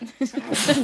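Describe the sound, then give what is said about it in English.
A single sneeze: a short voiced catch of breath builds up, then bursts into a loud, hissy, breathy blast that carries to the end. “Bless you.”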